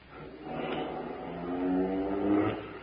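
A getaway car's engine revs and accelerates as robbers flee a bank, its droning pitch climbing and growing louder over a few seconds, with no voices.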